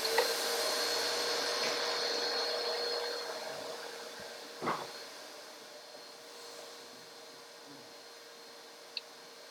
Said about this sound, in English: Oh, Gus is going to vacuum real quick.